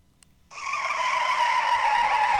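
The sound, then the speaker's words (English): Tires screech loudly and continuously after a brief silent start, a sustained high-pitched squeal that holds steady for about two seconds with no voices; a tire screech like the one that begins Mankind's wrestling entrance theme. “Even though that the tire screeching is also the beginning of Mankind's theme.”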